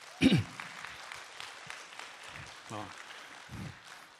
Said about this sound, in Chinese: 好不好？给我们的同工一个掌声好吗？